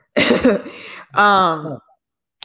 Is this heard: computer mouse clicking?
no